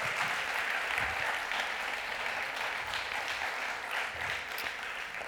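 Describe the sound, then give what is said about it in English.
Steady audience applause for a speaker at a fall retreat fills the whole stretch, a dense, even patter of many hands clapping at a fairly constant loudness, with no voices standing out above it. “Without further ado, can you guys give a round of applause”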